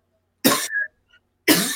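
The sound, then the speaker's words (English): Two loud, harsh coughs into the microphone, separated by a short pause with a faint throaty catch between them; no talking. “Yeah, don't cough on the mic.”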